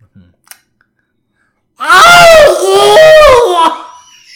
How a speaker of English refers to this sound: Then it starts screaming, and it sounds almost like a woman and a cat in a bag screaming together.